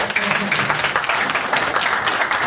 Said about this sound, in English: So thank you very much. Round of applause.